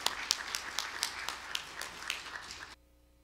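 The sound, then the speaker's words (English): Audience applause welcoming a performer at a show in Nottingham: a dense, crackling burst of many hands clapping with a steady rhythm, lasting under three seconds before cutting off abruptly to near silence. “So y'all give him a nice big round of applause.”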